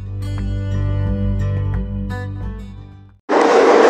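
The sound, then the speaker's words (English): A subway train in Chicago, Illinois, rumbles loudly with a deep drone and scattered rail clatter, then the sound cuts abruptly to a harsh rushing hiss of wind and wheels. “Yeah, this is 2B1 Entertainment in Chicago, Illinois, on the subway, and you're listening to the Burrito Radio Show.”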